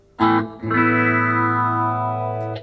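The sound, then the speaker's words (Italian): An electric guitar played through a phaser effect plays a short stab, then a long sustained chord with a swirling, sweeping modulation, thick and loud, ending with a brief pick scrape. “No, no, ce l'avevo, poi li stacco, li metto phaser. Finché non mi fulminerò, li smonto, li faccio. È un phaser.”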